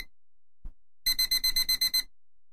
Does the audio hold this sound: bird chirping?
no